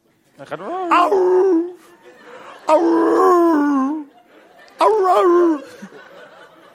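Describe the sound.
A person's voice imitates a tired dog whimpering while looking at food, in three drawn-out, wavering, fairly loud cries with short pauses between them, tapering off at the end of each whine.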